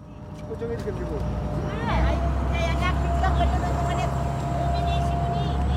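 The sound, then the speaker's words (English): The motor of an industrial old blue fishing boat drones steadily and loudly as it picks up speed, its low rumble deepening and thickening about two seconds in, while indistinct voices murmur over the top. “We board this industrial old blue fishing boat. The motor starts to pick up speed”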